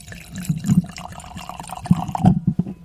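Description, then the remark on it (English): Domaine du Castel wine from Israel pours and glugs into a glass, with gurgling splashes and a few bright drips over about three seconds, no voices present. “What are you pouring now?”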